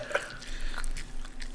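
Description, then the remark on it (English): Wet chewing sounds right up against the microphone as a person eats a hot wing, with soft repeated mouth clicks and smacks over a low steady hum, no talking. “…, stop chewing into the mic.”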